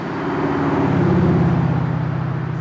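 A steady, loud low rumble of passing cars and heavy vehicles in city traffic on a crisp fall evening, engines droning together in a continuous roar that swells slightly midway and then holds, with no voices.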